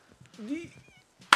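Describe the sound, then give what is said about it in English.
A person talks briefly, then a single loud, sharp hand clap cracks out abruptly at the very end. “No clap. Bravo.”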